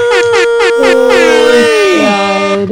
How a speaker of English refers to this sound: Air horns for you.